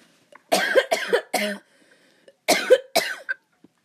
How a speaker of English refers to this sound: Hold up, I have to cough.